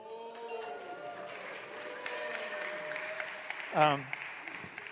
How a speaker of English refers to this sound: Some people are giving me a golf clap, you know, because you probably got 18 of these in yours.